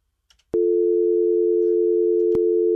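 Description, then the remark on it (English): A phone call with a guest drops, cutting off with a sharp click, followed by a steady, unbroken mid-pitched dial tone that holds at constant loudness, interrupted only by another brief click near the end. “Well, that's not good. We lost Greg. Hopefully, G can call back in.”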